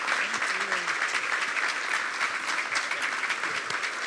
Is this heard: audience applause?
yes